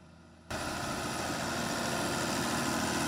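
A tractor engine surges in after a split second of quiet and then runs loud and steady up close, a broad rumbling roar with a hissing edge and no one talking.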